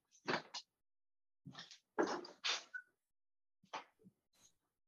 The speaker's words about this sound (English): I got to open the door for the dog.